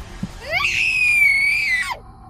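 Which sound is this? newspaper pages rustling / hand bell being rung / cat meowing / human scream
human scream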